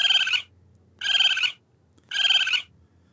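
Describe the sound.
A voice mimics a raccoon with three evenly spaced, shrill trilling chitters, each about half a second long with a buzzy, bright tone, separated by short quiet gaps.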